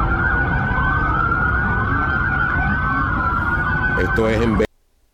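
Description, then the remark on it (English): A dense chorus of sirens from hundreds of police cars at a mall, called to a fight between juveniles, wails at once, their rising and falling tones overlapping continuously over a low traffic rumble, loud and sustained until the sound cuts off abruptly. “But if you're looking at the screen, there are hundreds of cop cars. And it sounds like every last one of them have their sirens on.”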